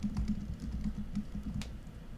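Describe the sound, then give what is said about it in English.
Rapid typing on a computer keyboard, a dense, steady stream of quick key clicks lasting a couple of seconds, not loud, with no talking. “Are you coding or typing? That was incredible.”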